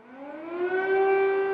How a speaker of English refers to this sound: In the Ukrainian capital, Kyiv, air raid sirens are a common sound. Despite being hundreds of miles from the front line, the city is still a target of Russian forces.